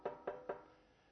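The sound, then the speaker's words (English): Three quick, evenly spaced knocks on a wooden surface, like a door or table, each with a short hollow ring that fades out. No talking, fairly quiet. “Knock, and it will be opened to you.”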